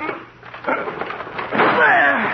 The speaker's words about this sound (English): The door's locked. He must be in there, but there's no sound in there now. Well, we've got to break the door down. Yes. Put your shoulder beside mine. Right. You ready? Ready. And shut.